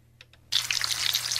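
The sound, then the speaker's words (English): After a brief quiet moment with a couple of faint clicks, food is put into a hot pan of oil and a loud, crackling sizzle bursts in, hissing and popping steadily until the end. “Another person here said the sizzling of a hot pan, putting something into a hot pan.”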